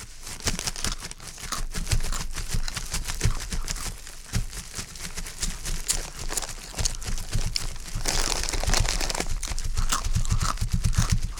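Steady crunching and crinkling of dry leaves being crumpled, mixed with sharp snapping cracks of sticks, made by two people, one cracking the sticks and one crumpling the leaves, continuing densely for about ten seconds without anyone talking.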